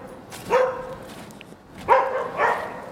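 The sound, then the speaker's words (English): A dog barks three times, one short bark followed after a pause by two quick ones, sharp and moderately loud against a quiet background. “Hey, doggy.”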